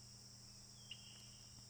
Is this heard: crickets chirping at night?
yes